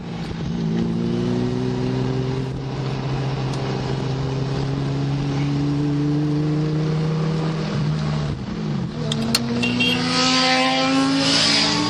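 A Ferrari sports car engine roars on a drive up from the coast to Palomar Mountain, its pitch climbing steadily through the revs, then dipping briefly at a gear change before pulling hard again, loud and continuous with no talking.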